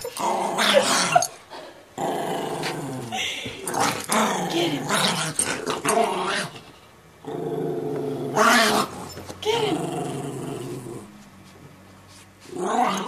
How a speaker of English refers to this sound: Even in play, Frankie sounded like a maniac. Here is the only recording I have of him, happily wrestling with my other dog, Memphis.